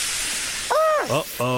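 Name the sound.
steam hissing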